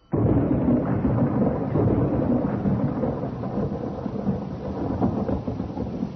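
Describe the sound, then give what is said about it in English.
Heavy rain pours steadily while deep thunder rumbles and rolls throughout, loud, with no voices present, in darkness at a lonely rural graveyard in Glencourse. “Like vultures on a dying lamb, we came down in rain and darkness on a coffin in the lonely rustic graveyard of Glencourse.”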